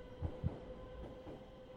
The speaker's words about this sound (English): And as a tube train thundered by, seated by the window, Joan Vincent spotted an advert in a second floor window.